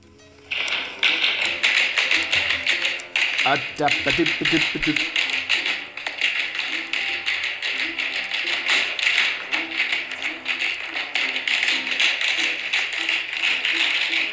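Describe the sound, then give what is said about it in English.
Spiked shoes, worn by a person being pulled along by two hounds, click rapidly and steadily on a hard surface, a busy tapping like tap dancing that runs the whole time, with a brief voice heard near the start. “And it almost sounds like I'm sort of doing old-fashioned tap dancing.”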